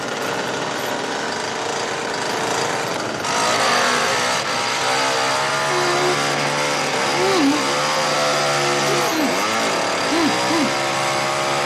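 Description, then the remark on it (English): In a film scene, a chainsaw pulled out of a suitcase snarls loudly and continuously, its engine pitch climbing and dropping in several sharp revs toward the end over a steady rough drone. “And what he pulls out of that suitcase is a chainsaw.”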